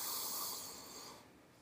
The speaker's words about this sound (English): and then just sit there and rest for a minute and pause in silence and take a deep breath in.